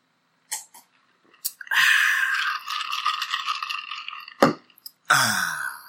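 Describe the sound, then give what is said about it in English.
Crunching of crunchy cheese puffs being eaten: a few sharp clicks, then a long stretch of dense, crackly chewing, a brief pause with a pop, and another loud burst of crunching. “I've actually been chomping on these things ever since we started the podcast, but I chew them very, very quietly and slowly until the ringleader is gone.”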